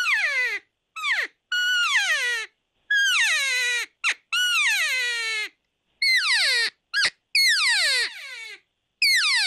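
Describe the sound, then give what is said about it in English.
A hunter's cow calls and estrus mews, two different cow calls: about ten high, nasal, whining calls that slide downward in pitch, some short and clipped, others long and drawn out, separated by brief silences with no talk. “So that's two different cow calls right there.”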